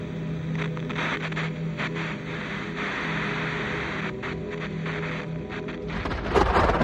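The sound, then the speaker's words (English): Steady stormy rain and low rumbling fill the background, then a loud clap of thunder bursts in near the end, booming and heavy, making a house rumble and its window panes rattle. No one speaks. “A particularly loud clap of thunder rouses Albert from sleep.”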